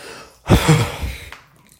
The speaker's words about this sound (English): I'm going to need to edit out some of this heavy breathing, or else like 50% of this whole thing will just be me breathing heavily. Maybe that's what y'all want, though. Like ASMR.